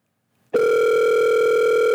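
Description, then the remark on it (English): A steady electronic phone tone starts abruptly after half a second and holds at an even, fairly loud level to the end, like the ringback heard while an outgoing call rings. No one speaks. “Oh, I get all the ringing.”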